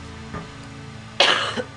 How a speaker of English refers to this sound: I've got a cough today, so it's been rough to talk, but this has been a lot of fun.